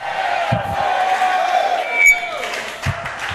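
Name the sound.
audience screaming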